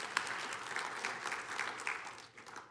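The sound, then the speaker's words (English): An audience claps steadily, a dense wash of many hands with short crisp bursts rising and falling throughout, loud and continuous before tapering slightly at the end. “yeah, you can clap for Jesus all day long.”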